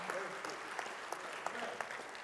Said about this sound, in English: That was a weak applause. I said, today, that was very weak.